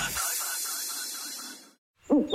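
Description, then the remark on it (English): An owl call rings out over a steady breathy hiss for about two seconds, then breaks off into a short pause before a louder, lower burst of sound. “I think he said Whiteman Park is a hoot.”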